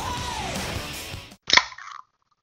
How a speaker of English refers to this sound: I got a can too. Did you hear that? You opened up a can? Yeah.